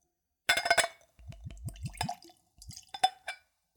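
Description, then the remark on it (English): Glass clinks against glass, then Patron Silver tequila glugs from a bottle into a clean Glencairn glass in a quick rhythmic burst of gurgles, followed by a few more light clinks. Fairly quiet, no talking. “And we'll go for a pour.”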